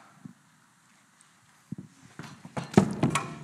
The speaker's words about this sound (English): I think I just knocked over the communion cup. It's a good start to the year.